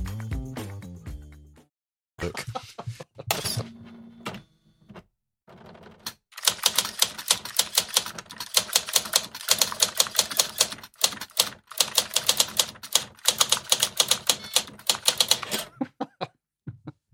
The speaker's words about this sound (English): The sound of a 1980s Olivetti electric typewriter brings us seamlessly into Karoo by Steve Tesich.